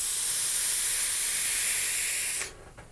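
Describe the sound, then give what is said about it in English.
A steady, bright hiss of a Noisy Cricket vape with a Bosun RDA firing holds for about two and a half seconds, then cuts off abruptly, followed by a couple of faint soft clicks. “I love that freaking vape.”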